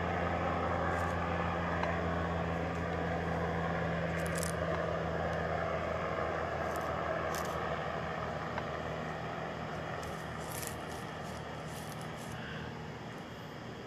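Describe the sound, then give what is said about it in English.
A police helicopter drones steadily overhead, a constant low engine hum with a faint rhythmic rotor flutter and broad whooshing noise, unchanging in loudness throughout, with no voices. “I don't like to talk and shit like that when a motherfucker flying over my head.”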